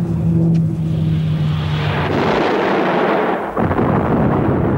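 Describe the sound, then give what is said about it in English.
A droning aircraft engine gives way to a loud, sustained roaring blast, like a crash explosion, that rumbles on with a brief dip before continuing. No voices are heard. “That plane is going to crash on us!”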